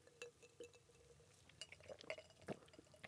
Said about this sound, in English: Everybody's going to hear so much clinking from our glass. Good. It's natural. It's about times we share with friends with alcohol. Dude, cheers.